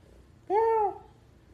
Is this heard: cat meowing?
yes